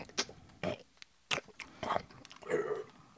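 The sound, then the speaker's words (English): A voice imitates wet, noisy belching and sticky swallowing, making five or six separate gulping, gurgling bursts with short pauses between them. The last one is longer and throatier. “He would become somewhat, like, kind of insensible to other people talking to him and just sit there belching noisily and making sticky swallowing motions with his jaw.”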